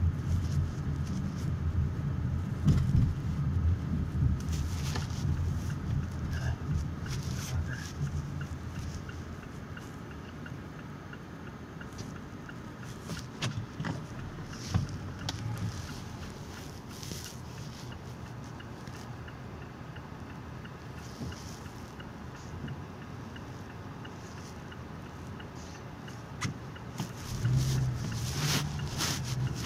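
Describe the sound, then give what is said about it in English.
A steady low engine and road rumble from inside a moving car on a Monday at 7:19 a.m. Eastern Standard Time continues throughout, with occasional light clicks and bumps over the drone and no talking. “So we're on the road now, 7:19 a.m. Eastern Standard Time on a Monday.”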